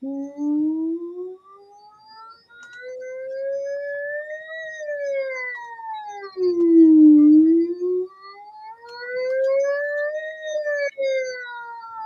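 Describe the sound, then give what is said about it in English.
A single voice sings a smooth siren-like glide, a singing exercise, sweeping slowly up and down in pitch several times up into the higher register, clear with no words. “So I do what we call the siren. Lots of singing teachers use it.”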